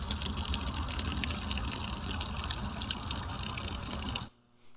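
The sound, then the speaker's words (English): Water pours steadily from an artesian well overflow, running constantly and spilling out into a lake, a loud, continuous rushing and splashing that holds constant for several seconds, then cuts off abruptly near the end. No voices. “This is the overflow from our artesian well. It runs constantly, day and night, in all weather and all seasons.”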